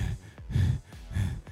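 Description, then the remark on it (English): A voice imitates heavy, out-of-breath panting after running in and quickly shutting a door, three quick breathy heaves in a steady rhythm, fairly loud with no words spoken. “I swing the door open, run in, shut the door really quick, and like panting.”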